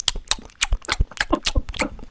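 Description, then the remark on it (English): A voice mimics loud chip crunching: a rapid, uneven string of about a dozen sharp, crackly bursts with no ordinary speech. “The episode where you're eating chips at the beginning, I forgot to turn your mic off, so …'s just going.”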